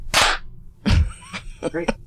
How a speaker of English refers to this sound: Would you like to lead us in a clap?